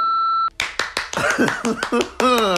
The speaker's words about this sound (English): Lovely, lovely round of applause.